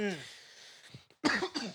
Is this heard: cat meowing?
no